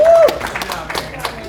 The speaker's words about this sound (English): Okay. Clap for him. Clap for him.